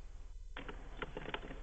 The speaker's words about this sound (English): What are you doing back there? What are you doing? Are you shuffling papers?